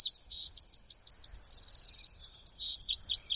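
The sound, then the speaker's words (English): A tiny Eurasian wren, a common garden bird, sings loud, a rapid, high-pitched cascade of warbling notes with a fast, even trill in the middle, continuing without pause and with no voices. “The tiny Eurasian wren is a common garden bird in England, quite similar to the winter wren of the U.S.”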